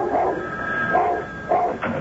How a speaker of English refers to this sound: Every time the phone rang, he barked and barked and barked till Joan answered it.